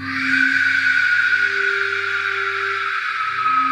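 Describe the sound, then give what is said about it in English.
An Aztec warrior whistle: a shrill, breathy whistle screeches without a break for several seconds, a harsh rushing scream with a wavering piercing tone on top and low droning undertones, loud and steady throughout. “It's said you would know the Aztec warriors were approaching your village when you heard this whistle.”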